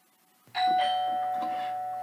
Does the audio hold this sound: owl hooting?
no